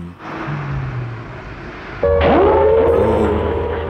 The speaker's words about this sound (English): I recognise that sound effect. It was later used in Attack on Cloud Base. That's the action station's siren in Cloud Base. Which is quite effective and quite chilling there, because you've never heard a sound like that on Cloud Base before.